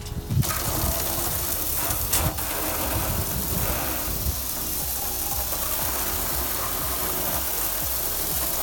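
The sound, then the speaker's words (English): A steady, hissing spray of water runs continuously against a car's surface as it is sprayed off before washing to remove dirt, grime and rocks, broad and noisy across the whole stretch, with a low mechanical rattle underneath and no talking. “you want to spray the car off first.”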